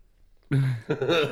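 After a moment of near silence and a quick sip of a drink, someone clears their throat in a loud two-part rasp, the second push slightly rougher than the first.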